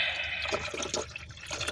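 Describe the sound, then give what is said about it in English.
Juice is poured into a container in a steady trickle that gurgles and splashes irregularly for a couple of seconds, with no voices. “Gotta pour the rest of this juice in here.”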